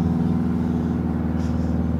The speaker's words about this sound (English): We love airplanes. That one's a loud one. What the hell kind of airplane is that? Oh, it's like an old school propeller one. That is a it's a fancy airplane. That's one of those amateur guys. Learning. In the airplane. Yeah, learning in a propeller.